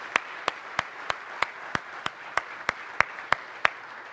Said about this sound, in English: Can you just stand up for a moment here? Let's just give them a round of applause for what they're doing.